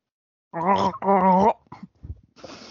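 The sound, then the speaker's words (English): A voice imitates drowning, a joke about the M. Night Shyamalan film Lady in the Water, with two loud, wavering gargling bursts, bubbly and pitched, then a few choppy sputters and a breathy hiss trailing off at the end. “That was me drowning.”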